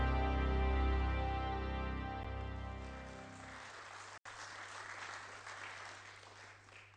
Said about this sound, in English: This is the first congregation I have visited that I've had a round of applause. And that's before I've said anything.